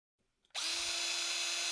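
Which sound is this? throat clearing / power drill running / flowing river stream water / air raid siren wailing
power drill running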